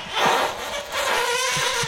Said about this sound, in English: Let's run her back. This is only farts. Only farts.